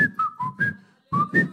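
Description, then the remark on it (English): A person whistles a short melodic phrase, six clear notes shifting up and down in pitch, with a brief pause before the last two, fairly loud. “He was going singing and whistling, knowing that the son will live.”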